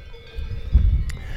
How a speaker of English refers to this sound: You might be able to hear cowbells in the background, and lots of cows here. Honestly, this is completely sort of traditional alpine views.